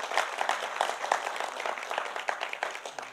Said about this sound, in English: How about we give each other a round of applause right now? Because you're amazing, you guys. You really are.